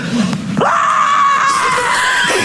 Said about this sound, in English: And then on cue, the armadillo turns and starts running at him and he screams.